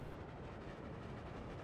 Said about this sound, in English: Elmo likes hearing the train wheels click-clacking on the tracks.